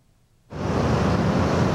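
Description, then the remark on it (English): After a moment of near silence, a loud, steady wash of rush-hour scooter traffic on Taipei Bridge in Taipei kicks in abruptly, many engines blending into one continuous roar with no voices. “Even under a level 3 COVID alert, Taipei Bridge is still a waterfall of scooters during rush hour.”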